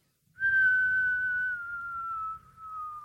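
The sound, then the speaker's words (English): A whistle thrown off Arthur's Seat, a hilltop in Edinburgh, shrills in one long, steady note that slowly sinks in pitch for nearly three seconds, with a low rumble of wind underneath and no voices. “So that's throwing a whistle off Alfred's seat, which is Arthur's seat in Edinburgh, but his little brother.”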